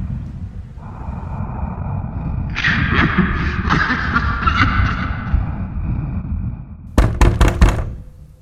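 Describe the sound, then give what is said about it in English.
Four quick, firm knocks by housekeeping on a room door, evenly spaced, arriving near the end after a stretch of low humming background with a brief tonal swell. “Hello, who's at my door?”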